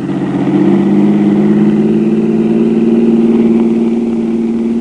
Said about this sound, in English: The car came roaring up behind us, cut around in front, tore ahead at 65, jumped the light at the next crossing, and...